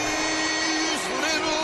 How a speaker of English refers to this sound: This is the crowd. He's smashing the helmet. Well, it's an oldie but a goodie. The Fanatic in his black tie and tails brings out the tamper and slams the Yankee helmet.